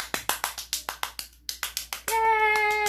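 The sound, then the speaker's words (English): One person claps about a dozen times in a quick, steady rhythm, with a brief break partway through, and then a sustained bright, ringing tone takes over. “I clapped for myself.”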